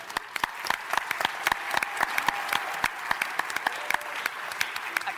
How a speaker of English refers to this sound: I've always been female, so I feel funny getting applause for that.